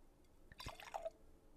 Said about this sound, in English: A little red wine ASMR because I only like drinking red or sparkling. Did you just hear that?